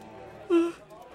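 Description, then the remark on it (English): A brief, breathy yawn from one sleepy person, a single short voiced exhale that swells and fades. “You hear that yawn?”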